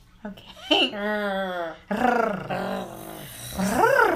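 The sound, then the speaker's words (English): A person attempts a cat-like purr with their voice, producing a few drawn-out, buzzy, growling vocal sounds that waver and rise in pitch, fairly loud, with short pauses between tries. “You can't purr like a cat?”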